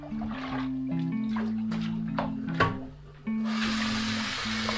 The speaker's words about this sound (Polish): Pozostało mi tylko spłukać. Nie wycieram, bo samo wyschnie. Spłukać. Wylać wodę.